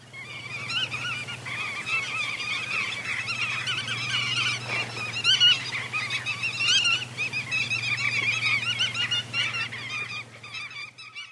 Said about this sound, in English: It gets its name from its white tail, which has brown bar patterns on it. Under its wings is a dull white colour, and it has this lovely long and slightly upturned bill. It makes a call that sounds like tit-tit-tit.